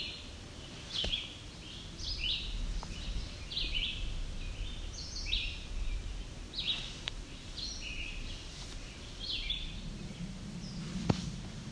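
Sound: chestnut-sided warbler singing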